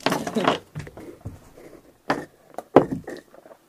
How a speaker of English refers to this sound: Roll for persuasion. I'm gonna throw my dice first.